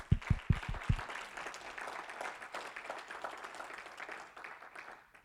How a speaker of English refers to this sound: Let's clap our hands.